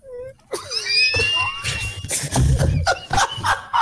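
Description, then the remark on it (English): A chair squeaks repeatedly, with high, wavering whines that slide up and down in pitch, mixed with scraping creaks and soft knocks as it shifts. No one speaks. “No, S-Man's moving his chair and mine's squeaking.”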